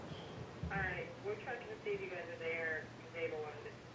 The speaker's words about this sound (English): Sorry, my sister's calling and calling and calling, but I can't get up to get to the phone and talk to her.